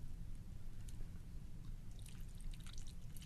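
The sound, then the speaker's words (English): A little sweet and sour margarita mix pours into glasses with a soft trickle and splash, growing brighter and more splashy toward the end over a low background rumble. “So we're going to add that a margarita mix to them, just a little bit.”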